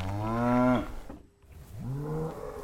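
Two loud, drawn-out cow moos, each a low harmonic bellow, separated by a brief pause, with faint background noise and no talking.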